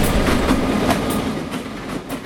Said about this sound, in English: Our house is right here next to our business, and the train tracks run probably 100 feet, maybe, behind our house. So we hear the train.